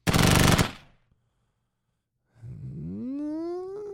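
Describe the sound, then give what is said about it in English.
A loud, rapid machine gun burst rattles for under a second, then stops. After a pause, a pitched whine slides upward and holds steady to the end. “You want to try to remain more accurate like that person was doing, but we're not going to be responsible with our machine gun, so that one's out.”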